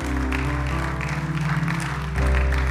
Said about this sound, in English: Hey, why don't we give those people that put up their hands an awesome round of applause. That's so good.